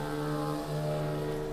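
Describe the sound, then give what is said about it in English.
A motorcycle engine drones loudly outside, a steady, buzzing rumble that holds for the whole moment with no one speaking over it. “Thank you, Mr. Motorcycle, for being loud in my podcast.”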